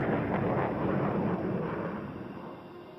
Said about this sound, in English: If the plane moves faster than the speed of sound, it creates a bow shock. People on the ground can hear the combination of those sound waves as the bow shock passes in front of them in the form of a sonic boom.